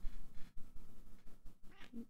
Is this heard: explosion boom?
no